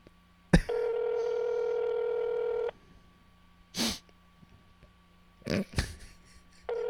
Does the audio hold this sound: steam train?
no